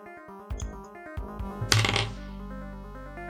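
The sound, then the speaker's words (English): Dice are rolled across a hard surface for an attack roll, landing on a one: a few sharp clicks and taps, then a louder, brief rattling clatter as they settle, over a soft, steady background tone. “Are you rolling for an attack? I'm rolling to knock him out.”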